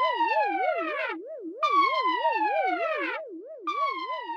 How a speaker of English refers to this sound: Sound the alarm.